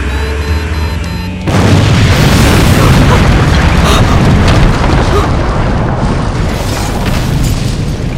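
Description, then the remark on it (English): A house explodes with a sudden, deep boom around a second and a half in, followed by a loud, sustained roar of rumbling debris and fire that stays dense and heavy to the end. “Oh my God. The whole house.”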